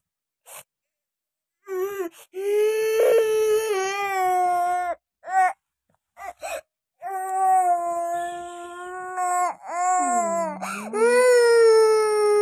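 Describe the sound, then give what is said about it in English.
A baby wails in long, strained, high-pitched bursts, broken by short gasps and sobbing catches of breath, the crying loud and insistent throughout. “Enough of crying now.”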